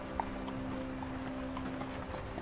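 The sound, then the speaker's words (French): Hooves of several horses with long, slightly wavy manes and sturdy legs clip-clop at a slow, steady walking pace on the ground, the soft regular steps fairly quiet over a constant low background hum. No one speaks. “On dirait presque que ces chevaux portent des boots. Leur démarche parfaitement orchestrée, compose une mélodie à chaque fois que leurs sabots foulent le sol.”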